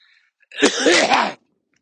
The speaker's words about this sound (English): But I've still got a cough, so I apologise for that. Still hawking up the odd phlegm ball.